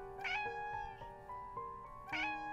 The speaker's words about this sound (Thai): เสียงแมวร้องดังมาจากข้างหลังแมวหนุ่มลายสลิดตัวโตกำลังมองมาที่ฉัน